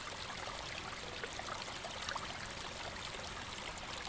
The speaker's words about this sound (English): Continuing down the hill, the sounds of rushing water.